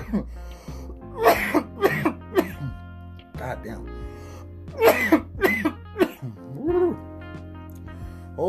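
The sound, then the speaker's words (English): A man coughs hard after taking a hit of weed from a bowl, in a string of harsh, ragged bursts, with wheezy breaths between fits and a brief muttered remark partway through. “Watch this cough.”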